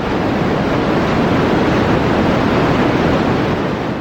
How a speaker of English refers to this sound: White noise is noise that has all the possible frequencies at the same level. So it's the least structured of sound that there can be